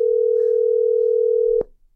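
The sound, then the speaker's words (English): A steady, single-pitched phone ringing tone holds for about a second and a half, then cuts off with a sharp click as the line picks up, leaving near silence. No one speaks. “and call him, and then when it's ringing, bring us in and let us know we're on, okay?”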